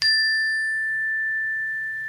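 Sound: cleansing chime ringing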